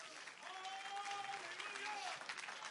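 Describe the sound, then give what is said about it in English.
A crowd claps in a dense, steady wash of applause with no gaps, while a voice rises and falls over the top of it, sustained at a fairly loud level. “Come on, clap your hands.”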